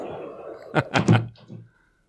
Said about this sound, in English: Shut that door